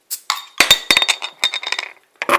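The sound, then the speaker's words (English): Crisp metallic clicks and scrapes as a bottle opener works at the cap of a bottle of black beer, a quick flurry of clinks with a faint ringing tone, then a final snap as it comes free. “Let's get the cap off this.”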